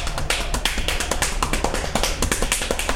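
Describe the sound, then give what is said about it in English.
A steady hand-drumming pattern of thumb hits and muted palm slaps played as dead notes on a surface, in a right, left, right, right, left sequence; sharp percussive taps repeat quickly in an even rhythm, with no talking. “I'm hitting with my thumb and then this hand is slapping too. But it's like a dead note.”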